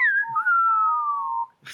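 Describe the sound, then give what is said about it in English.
A person whistles a long, sliding note that gradually falls in pitch, loud, ending with a short breathy burst of noise. No one speaks. “If you can whistle better than my dickhole can, then you can walk out of here with only 7 orifices.”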